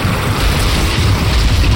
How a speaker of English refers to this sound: A flash of light obscured the area as a bolt of lightning struck down, zigzagging its way towards the docks.